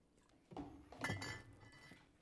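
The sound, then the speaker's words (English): Glasses clink together in a toast, two bright taps close together, the second ringing out with a short shimmering tone that fades away. Nobody speaks during it. “I'll drink to that. Persistence never fails. That's a fact. Cheers, guys. Cheers. Cheers.”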